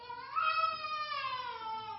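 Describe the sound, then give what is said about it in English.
A baby boy cries during a sermon in one long, drawn-out wail that rises in pitch, then slowly sags, heard on its own with no talking over it. “Take the baby back, get him some water, do something.”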